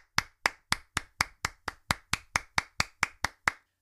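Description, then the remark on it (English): A single person claps their hands about fifteen times as a round of applause for AEW's Double or Nothing selling out in 4 minutes, in a steady, even rhythm, each clap sharp and fairly loud, with no talking. “Let me do my round of applause here.”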